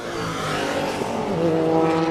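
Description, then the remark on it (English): A loud, buzzy engine of a Datsun 1600 race car fitted with a rotary engine passes by, its pitch rising as it accelerates, with a harsh, raspy exhaust note that sustains throughout. “Oh, now that was a Datsun 1600 with a rotor in it.”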